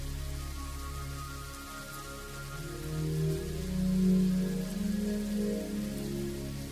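A thunderstorm recorded from a house's guest room: steady rain patters on a surface throughout, while a deep, low rumble of thunder swells up in the middle and slowly fades. No voices are heard.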